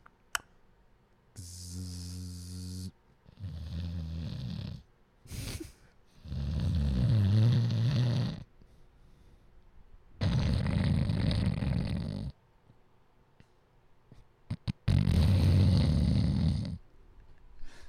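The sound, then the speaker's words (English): Loud human snoring with no talking: about five long, rasping snores come at uneven intervals, some harsh and gurgling, with short quiet pauses between breaths. “What's funny is you know somebody that snores like that.”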